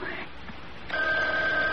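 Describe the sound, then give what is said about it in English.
A telephone starts ringing partway through: a steady, sustained electronic ring tone that holds at moderate volume to the end, over a low background murmur. “Oh, it's the phone ringing, Mother.”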